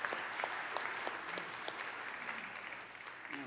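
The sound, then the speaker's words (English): An audience claps steadily for several seconds, a dense patter of many hands that stays fairly even before thinning slightly near the end, with no talking. “Okay, let's give a little round of applause”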